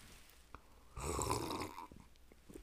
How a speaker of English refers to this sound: Oh, sip for cinematic pause of the reflection of what I just said. Double sip.